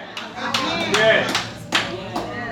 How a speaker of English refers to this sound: I'm not going to give it about 3 hand claps. That's all I heard. I heard 3 hand claps and 2 amens.